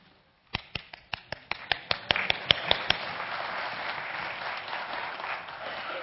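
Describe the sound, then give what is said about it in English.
Audience applause for a group of second-grade children from a worship lab begins as a dozen or so sharp, evenly spaced claps, then blurs into a thin, scattered patter of clapping that continues steadily for a few seconds. No one speaks. “That was not very good applause.”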